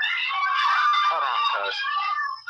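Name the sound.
crowd screaming and cheering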